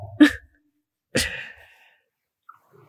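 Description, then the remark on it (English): A puppy named Theodore gives two short, sharp snorts about a second apart after someone blows on his face to stop him biting, fairly loud, each a quick breathy burst through the nose, followed by near silence. “The only way he stops biting is if you blow on his face, and it is the funniest thing ever.”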